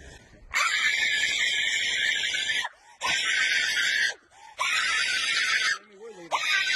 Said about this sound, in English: Especially when you're gonna scream like that.